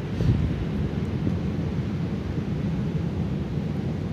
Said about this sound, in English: Hopefully you can hear some of the ocean sounds. Because that's what it's all about, isn't it?